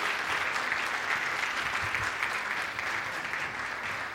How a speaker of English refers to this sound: Round of applause for these young folks. That's amazing.